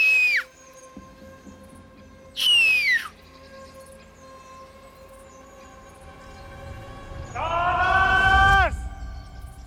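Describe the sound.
A man's voice imitates a bird call three times, each a loud, high-pitched cry that slides downward in pitch, the last one longer and wavering.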